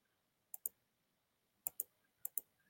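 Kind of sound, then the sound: household object, computer mouse clicking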